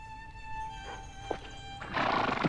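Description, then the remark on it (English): A horse whinnies with a high, wavering call, followed by a loud breathy snort, while hooves clip-clop faintly underneath as two horses and riders travel from Carleon on a bright, warm summer day. No one speaks. “It was a bright, warm summer day as two horses and riders made their way from Carleon.”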